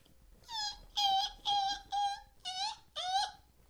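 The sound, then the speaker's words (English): A voice imitates a bat with six short, high-pitched squeaky whines in quick succession, each wavering slightly in pitch, fairly loud over a quiet background with no talking. “I tried to do a bat.”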